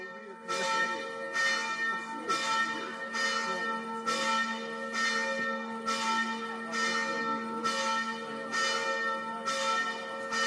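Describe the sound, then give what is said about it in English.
Church bells ring out steadily in the town of Kator, a small town on the banks of a river with a fortress above, with evenly spaced strikes about once a second and rich tones humming on between them. Fairly loud, with no one talking. “But we started our week in Kator, and our first clip for you today is the bells of Kator.”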